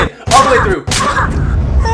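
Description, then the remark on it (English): Chappie, from the film Chappie, is slapped: two sharp, loud slaps land about half a second apart, each a bright smacking crack, with muffled vocal sounds and background noise filling the gaps between and after them. “Oh, Chappie got slapped.”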